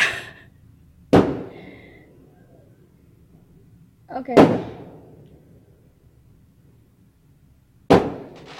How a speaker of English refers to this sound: What's that? Oh my God, it's firework!